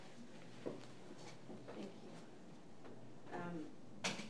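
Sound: door being closed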